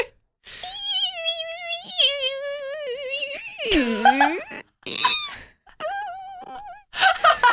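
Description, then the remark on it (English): A person vocally imitates a margay imitating a tamarin baby's cry: long wavering squeaky whines, one dipping swoop, then shorter chirpy bursts, fairly loud with brief pauses between. “So instead, I'm going to do my best impression of what I think a Margay imitating a tamarin baby would sound like.”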